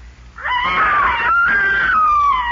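A boy up in a haymow lets out a single long, high-pitched scream that rises and holds for about two seconds, loud, with a wavering tone and no talking around it.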